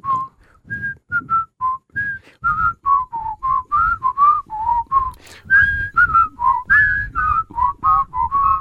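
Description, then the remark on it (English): A person whistles the theme song of a TV show, a cheerful, bouncy melody with a steady sequence of short and held notes that move up and down in a familiar tune-like pattern, with no talking. “And I can't whistle, but I'm going to do it anyway.”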